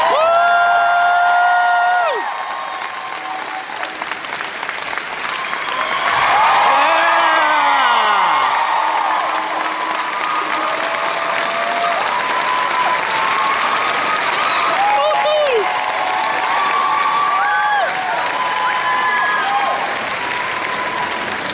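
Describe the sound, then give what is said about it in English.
A large convention crowd at Planet Comic Con applauds and cheers loudly and continuously as actor Cary Elwes is brought on stage, with scattered whoops and shouted voices rising above the dense clapping for the whole stretch. “What a reception. What a crowd.”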